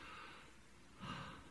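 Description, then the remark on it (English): A long, deep breath drawn in through the nose and mouth, an airy rush that swells louder near the end. Fairly soft, with no talking. “Take a good deep breath.”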